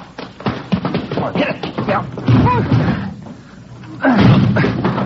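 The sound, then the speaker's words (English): Heavy, repeated thuds of a shoulder ramming against a blocked front door with something piled against it, several blows in quick uneven succession, loud, with strained voices and grunts mixed in. “Come on, hit it again.”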